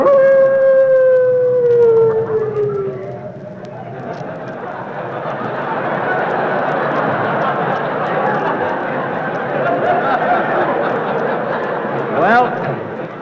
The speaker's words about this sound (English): Boy, that night wind is sure chilly. Sure is.